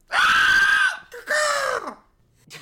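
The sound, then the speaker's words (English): A person lets out two loud, drawn-out screeching cries in a row, mimicking the shriek of Dubilia, a bird character, each one sliding downward in pitch at the end, followed by a brief start of another. “Do the shriek. Rah! He's a bird!”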